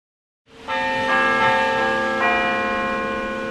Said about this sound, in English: One evening over dinner, Kent and his wife heard the sound of church bells wafting over from a nearby church. He thought it was pre-recorded. She thought it was real bells.